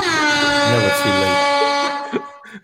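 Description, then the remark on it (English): A loud, sustained air horn blast with a rich stack of harmonics holds steady for about two seconds before cutting off, with a brief trailing noise at the end. “It's never too late to hit that air horn.”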